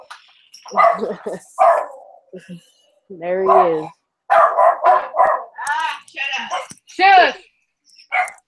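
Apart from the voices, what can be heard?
dog barking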